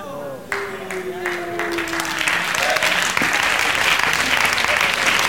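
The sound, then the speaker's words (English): A crowd bursts into applause that swells into a dense, steady roar of clapping, with a brief tonal voice line at the start before the hands take over. “If you can't clap, I understand.”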